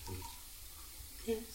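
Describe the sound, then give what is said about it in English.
Tea pours into a cup in a soft, steady, quiet trickle of liquid, with a brief brighter splash near the end. “I'm pouring some tea out right now if anyone wants some tea.”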